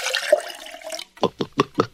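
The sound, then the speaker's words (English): Water from a sink tap rushes steadily into a drinking glass for about a second, then stops and gives way to five short, evenly spaced splashing bursts, fairly loud, with no talking. “Not the glass, but the water I just got from the sink.”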